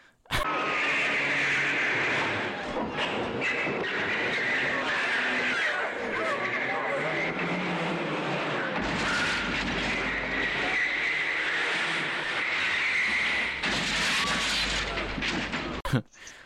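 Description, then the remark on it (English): In a film's garage scene, a BMW revs and skids with screeching tires while drifting and ramming into people, a loud, continuous stretch of engine roar and squealing lasting the whole time, with indistinct voices and commotion mixed underneath. “When they're in the garage, that one guy gets into that BMW and just starts ramming into people and drifting about like he's in, like, you know, like Resident Evil 7 when you're in the garage and just going back and forth.”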